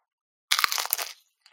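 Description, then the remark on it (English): A loud crunch as the crisp end of a pizza crust is bitten, a burst of brittle crackling lasting under a second, with a faint crackle trailing after. “I'm gonna get a crunch here in the microphone because I'm gonna eat an end.”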